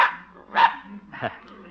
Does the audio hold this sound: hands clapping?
no